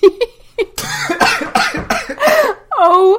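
A man coughs and sputters in a run of harsh, wet bursts, loud, then gives a strained, wheezing groan as he tries to recover after wine went up his nose while he was sloshing and sniffing it.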